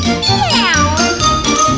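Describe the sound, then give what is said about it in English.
A single drawn-out meow with a pitch that swoops down and back up, fairly loud, set against a steady, busy background of tinkling, music-like sound. “but it kind of sounds like you're the one meowing.”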